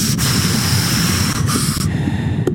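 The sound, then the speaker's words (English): A loud, continuous airy hiss from a scuba regulator connected to an air tank, with steady breathing rushing underwater in the ocean and a few brief swells in the noise, and no voices. “I got an air tank that I'm hooked up to. Oh, so that's why I hear”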